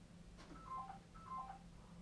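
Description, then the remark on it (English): A phone rings with an electronic two-tone trill, two short rings in a row, fairly soft over a low background hum, with no talking. “Our phones are ringing now, look, everyone's ringing.”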